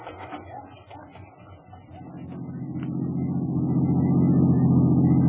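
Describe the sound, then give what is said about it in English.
A rented car's engine rumbles low and steady, growing louder and fuller over a few seconds as it is driven and parked across the street, with no voices. “In a rented car, I drove back to the Anderson address, parked across the street, and watched.”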